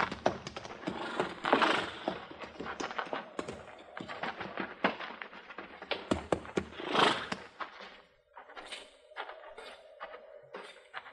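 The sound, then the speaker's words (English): Horses shift and stamp in barn stalls, hooves clopping irregularly, with a couple of loud snorting bursts and a drawn-out whinny near the end. “Tie him up in those first two stalls, huh?”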